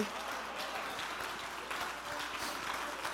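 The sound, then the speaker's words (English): A church audience claps steadily after a preacher calls on them to clap their hands and say God is going to bless them, many hands creating a dense, continuous patter of applause at a fairly even loudness throughout, with faint voices mixed in beneath. “I wish somebody would jump to your feet and clap your hands and say, God is going to bless me.”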